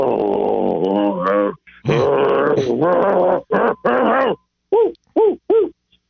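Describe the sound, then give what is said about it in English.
A male caller on a phone call imitates a dog, with drawn-out growling sounds followed by a string of short, sharp bark-like yelps, loud with brief gaps between them. “or did you just want to growl and bark?”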